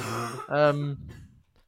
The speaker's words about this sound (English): I just launched the cat so I could sit up a bit better and not cough a lot. I do apologise for my cough.